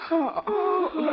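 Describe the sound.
A radio sound effect of girls yawning: several voices let out drawn-out yawns that overlap, their pitch sliding up and then sagging down, in one steady breathy stretch lasting just over a second.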